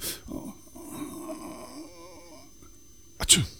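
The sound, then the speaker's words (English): Low murmured vocal noises lead into one sudden, loud, breathy burst near the end: a person putting on a single fake sneeze. “So obviously you've came in your pants, but you're just going to pretend that you've sneezed.”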